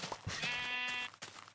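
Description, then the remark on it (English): A sheep lets out a single wavering bleat lasting about a second, loud, with a bit of brief background noise after it and no talking. “More sheep.”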